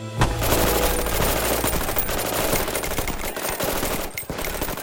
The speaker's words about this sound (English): So they slow down, which is exactly what the lawmen waiting in the bushes had planned. And then, so many bullets.